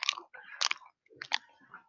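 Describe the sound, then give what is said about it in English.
Crunchy chewing of a banana, with several wet, crackling bites in two bursts separated by a short pause, loud with no talking. “That's a crunchy banana, dude.”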